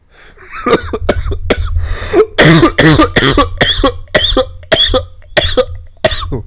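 A loud fit of coughing after vaping: a dozen or so sharp, harsh coughs in quick succession, some wheezy and rasping, continuing for several seconds with brief gasps between them.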